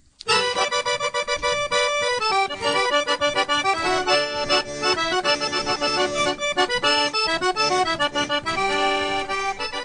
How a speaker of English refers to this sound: And remember, they're all musical, and here comes an accordion.